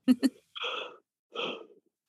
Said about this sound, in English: We have such a deep emotional connection that I made her yawn over Zoom.